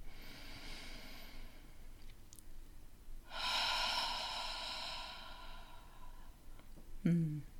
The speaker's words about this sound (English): Can we begin this new season and this episode just by taking a breath together? Connecting our hearts, connecting ourselves, connecting to all. Breathing in.